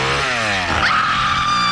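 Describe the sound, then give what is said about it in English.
A chainsaw engine sputters low, then revs sharply up to a sustained high-pitched whine, loud, with no voices; a chainsaw in the Halloween spoof trailer A Nightmare on Sesame Street. “Hand me that chainsaw, will you?”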